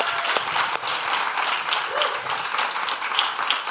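A large audience applauds steadily and fairly loudly, a dense wash of many hands clapping at once that holds without fading, with faint voices mixed into the crowd noise.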